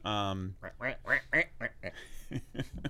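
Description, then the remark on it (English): A toy duck gives one loud, buzzy, nasal quack lasting about half a second, then a string of short vocal bursts follows, sounding like chatter or laughter. “Look, it's right here. There's a sight gag. Here's the duck.”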